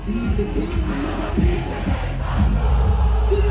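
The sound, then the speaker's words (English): A large crowd of people in a video sings along to a rapper's song, a loud, dense wash of massed voices with a steady rhythm, growing slightly louder toward the end. “Notice the crowd of people in the video singing his song,”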